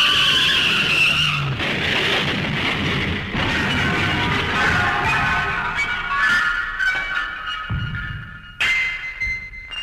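A loud, sustained tire screech from a runaway garbage truck skidding in a street, shrill squealing layered over heavy engine rumble for several seconds, ending in a sharp jolt. No one speaks.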